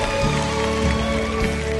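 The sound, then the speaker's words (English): A church audience claps to thank God in a dense, steady wash of applause with no pauses, loud and continuous, while a sustained musical tone hums underneath. “Somebody clap today and thank God.”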